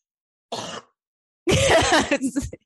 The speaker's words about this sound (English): It's because I just, that's just how I've always, pause for cough.